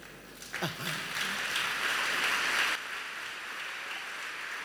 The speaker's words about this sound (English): Are you clapping for God?